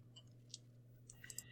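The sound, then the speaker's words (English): A few light clicks and clatters of a die being rolled again during a tabletop role-playing game, tumbling across a table over a second or so above a low steady hum, ending in a sharper knock; it lands on 14. “I believe you have advantage, so go ahead and roll that dice again.”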